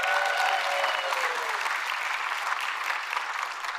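An audience breaks into steady applause, a dense wash of many hands clapping at a fairly even loudness throughout, with a brief faint tonal hum fading away in the first second or so.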